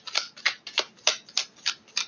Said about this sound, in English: All right. Shuffling the cards again.